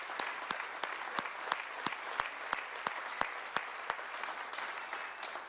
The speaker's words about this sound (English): I want us to clap our hands anyway right now. Come on. Even if you don't feel like it.